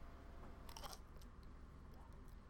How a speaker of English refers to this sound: I've never tried to crunch a banana like a McElroy. So let's just see how this sounds, you know, audio.